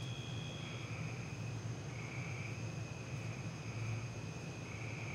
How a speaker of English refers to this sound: Outside, the hum, like a drone, militaristic.